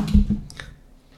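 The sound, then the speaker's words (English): A big gulp of a drink: a couple of low, muffled swallowing pulses, then a brief wet click as it ends. Fairly quiet, with no one talking. “That was a big sip.”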